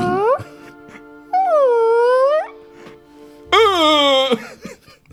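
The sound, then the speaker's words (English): A voice imitates a whale call with drawn-out, sliding moans: a short rising one, then a long wail that dips and climbs, then a loud falling cry, with quiet gaps between. “Just one low. Whales are floating around like...”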